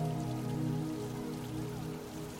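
Water from an elegant, very old stone fountain in the Monti neighborhood in the center of Rome trickles and patters steadily for the whole stretch, a continuous splashy hiss at an even level, with a low steady hum running beneath it.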